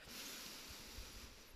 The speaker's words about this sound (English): Okay. Take a deep inhale in.